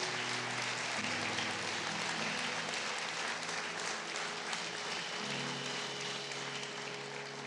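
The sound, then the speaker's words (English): A church audience gives a hand clap of praise after a prayer, clapping steadily for several seconds, a dense wash of clapping holding fairly even before easing slightly at the end, with low sustained musical tones humming underneath. “Come on, would you give a hand clap of praise for all those?”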